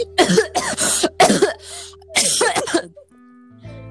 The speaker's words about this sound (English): Okay, so I wish I could, like, mute myself. I talk too much. I'm just gonna start, like, coughing.